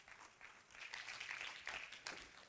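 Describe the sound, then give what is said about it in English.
An audience at an evening service claps hands in sustained applause to welcome the pastor to the pulpit, a dense, steady patter of many people clapping together, rising slightly in intensity. “Would you just clap your hands and let's welcome Pastor to the pulpit tonight.”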